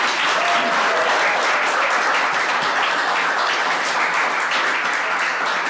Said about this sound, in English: First of all, give all our people a wonderful round of applause.